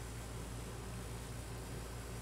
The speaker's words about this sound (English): I'm going to see if you can put up with my air conditioning noise for a little bit. I know it's going to get loud, but it is really dang hot this week in Southern California.